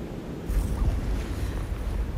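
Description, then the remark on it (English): Steady outdoor wind rumble on a beach as the wind calms after rain and the sun comes out, with the broad wash of sea waves, loud low-end buffeting against the microphone and a continuous surf hiss, no voices. “The wind has calmed a bit and the rain seems to have gone. Oh wow, and the sun comes out and shines on that beach.”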